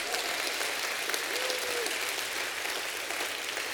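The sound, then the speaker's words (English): An audience claps together in a steady, dense wash of applause, many hands blending into continuous bright noise that holds evenly for several seconds without pause. “If your life's been blessed and you're happy and you know it, clap your hands.”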